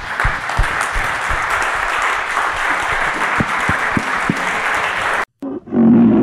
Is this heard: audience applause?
yes